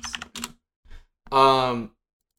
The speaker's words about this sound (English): I think after I finish typing this, because I don't want the clicky clackies talking over me,